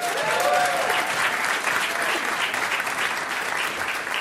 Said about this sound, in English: You can clap.